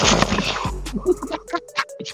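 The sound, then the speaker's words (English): An air cannon, shot by the character Seymour, fires with a loud, booming blast, its deep rumble lingering for over a second before a voice briefly speaks at the end. “He goes, shoots the air cannon.”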